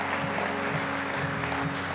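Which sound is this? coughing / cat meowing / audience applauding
audience applauding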